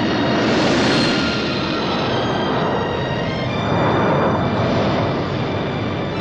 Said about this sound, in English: I've got planes out there. Those planes give us all a second chance.